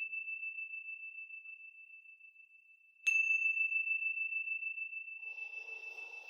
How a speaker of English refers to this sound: Now wiggling your fingers, wiggling your toes, and when you hear the sounds of the chimes, listening all the way through, and then coming back into this space.